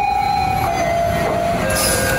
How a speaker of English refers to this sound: I'm in the Medellin metro. What a delight.